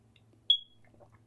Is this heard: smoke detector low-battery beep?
yes